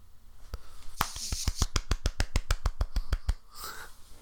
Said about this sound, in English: Was that a clap or did you drop something? No, that was a clap.